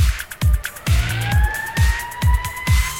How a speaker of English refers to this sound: Look, Peter, those police cars are headed towards